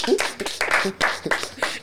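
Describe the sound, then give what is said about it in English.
A small group of people on set clapping their hands in a brief burst of applause for someone who learned to swim, the claps quick and irregular, moderately loud. “On set, clap”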